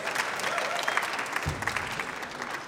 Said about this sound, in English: So we've got a table, and we've got three places set. Round of applause for my lovely assistants.